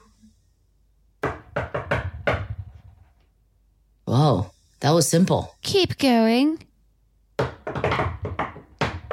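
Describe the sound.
A quick rhythmic run of knocks on a door, like a secret knock pattern, followed by people talking and a voice warbling in a sing-song way.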